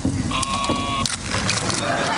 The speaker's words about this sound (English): Sheep in the box, I think that was the title for it. It was a wooden box with some holes on it and giving this sheep sound and running around the room.